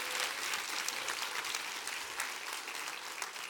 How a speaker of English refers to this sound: Why don't we just become a church that's just alive and well on planet Earth and show our health by our praise and our worship? Why don't you clap your hands real big for Jesus right now?